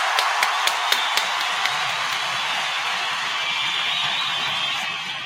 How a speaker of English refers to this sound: keep those round of applause going for 583 Expressions